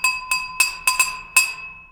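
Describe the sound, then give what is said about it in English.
A short theme sting for the A Toast and a Roast segment, made of six bright glass clinks in an uneven rhythm, each chime ringing with a sustained high tone that fades out after the last strike. No voices. “And that was the A Toast and a Roast theme.”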